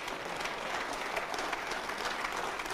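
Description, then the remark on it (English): A church audience bursts into sustained applause at the preacher's call to clap, many hands clapping in a dense, steady roar that holds at an even level throughout with no voices standing out. “You ought to clap your hand this time.”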